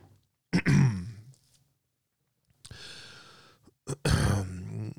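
throat clearing

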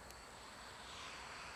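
aircraft flying overhead

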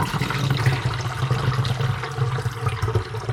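water running from faucet

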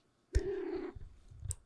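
cat purring or meowing

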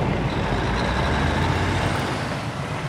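truck

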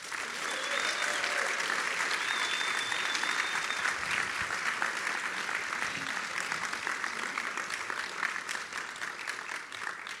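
audience applause and cheering

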